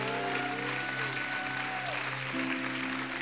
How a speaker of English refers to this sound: Has God healed anybody in this house? Give him a hand clap.